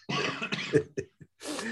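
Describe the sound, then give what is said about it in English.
A person who recently had COVID coughs several times in quick succession, fairly loud, with short raspy bursts separated by brief pauses, ending in a longer breathy cough. “Oh, sorry if I do cough throughout this.”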